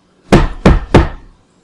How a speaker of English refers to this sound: Okay, so. Right. I guess I'll knock.